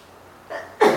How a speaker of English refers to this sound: Bless you.